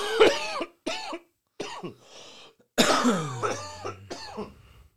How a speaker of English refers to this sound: you know, we're using microphones and a laptop, and all of us are over here coughing.